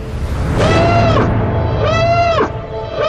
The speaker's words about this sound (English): I thought somebody was banging that noise. That alarm noise is horrible. That's great. I literally thought somebody was banging that with their mouth.